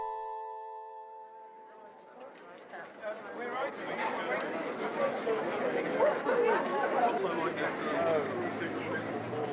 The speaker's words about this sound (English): We're standing outside the Piccadilly Theatre in Denman Street in London's West End. There's the usual theatre crowd gathered and a group of beautiful men in dinner jackets and bow ties, middle-aged women wearing posh frocks, and some boyish lesbians